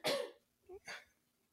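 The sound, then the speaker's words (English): A sharp cough bursts out, followed a moment later by a short throat-clearing grunt and a second, softer cough, then quiet. “Because I got to take all these coughs out. That's only my second one.”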